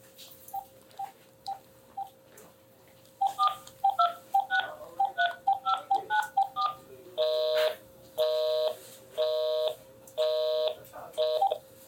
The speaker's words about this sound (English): This is why we ask y'all to write, you know, legibly, because when it's time to dial, that's what happens.